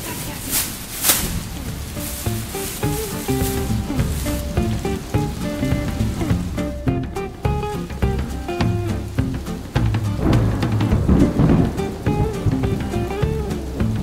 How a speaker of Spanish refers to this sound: No me lo puedo creer. Para un día que voy a la peluquería y tiene que llover.